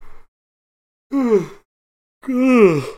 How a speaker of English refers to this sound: I'm yawning one last time.